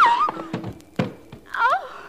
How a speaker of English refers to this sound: No, my dear, I didn't. I just knocked him out. I didn't kill him.